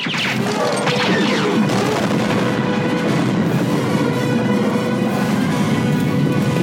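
A massive explosion from a Star Wars movie, as Veers' AT-AT fires at maximum firepower and blows up the shield generator; loud, with a dense crashing roar and crackling debris that rumbles on steadily for several seconds without letting up. No voices.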